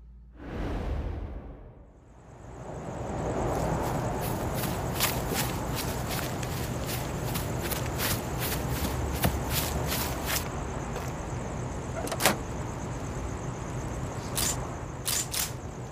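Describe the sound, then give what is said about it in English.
Footsteps of a man walking away at a steady pace over a rough, gritty surface after he drops a gun on the ground, with a brief swooshing rush at the start and occasional sharp clicks; no one speaks. “Sean drops the gun on the ground and leaves.”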